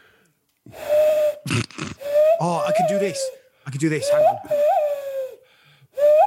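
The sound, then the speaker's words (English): A person blows into cupped hands to make owl hoots: several breathy, hollow tones, each holding steady then sliding slightly upward, with brief bits of talking in between. “I'll make an owl nose with my hands, hang on.”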